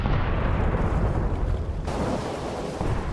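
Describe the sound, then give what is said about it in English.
A dense, continuous barrage of artillery fire from Forts Jackson and St. Philip raining shells on the gunboat USS Cayuga and the ships behind her on the river, booming cannon shots blurring into one loud, low rumbling roar with no gaps and no voices. “Forts Jackson and St. Philip rain shells on the Cayuga and the ships just behind her.”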